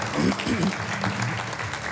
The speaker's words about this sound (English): Let's applaud those who said yes to Jesus today. So proud of you.